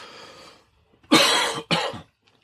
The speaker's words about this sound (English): excuse me. I got this cough, man. It's driving me nuts. Not the COVID cough, but it's just another cough.